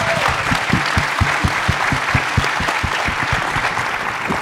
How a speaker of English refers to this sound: Ladies and gentlemen, a round of applause for our panelists.